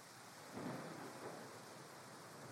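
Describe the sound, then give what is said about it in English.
Steady rain hisses throughout while a low roll of thunder swells early on and then fades back into the downpour, giving a dense, continuous stormy wash with no voices. “The storm raged for hours, but the worst of its wrath passed without further incident.”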